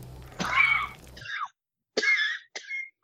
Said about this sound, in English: I swallowed something and gave me coughs. Pardon me.